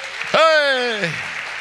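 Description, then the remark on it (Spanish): Steady crowd applause with a dense, even texture, briefly topped by a loud, drawn-out voiced shout that rises then falls in pitch. “Dale un aplauso fuerte, dale un aplauso.”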